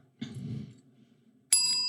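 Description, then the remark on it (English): A brief low rustling bump, then a small bell is struck once, loud, its bright metallic ring holding steady to the end, rung to signal a correct guess in a game. No one speaks. “If you can guess who the other person is first, if they're right, you ding.”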